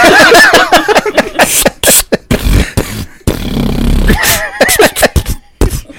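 Loud, close breaths rush straight into the microphone in gusty, uneven bursts with low rumbling puffs, mixed with short throaty vocal noises and brief pauses between.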